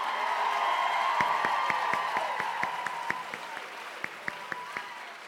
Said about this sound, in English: No, can you just like sit, just take a moment and just clap for them forever.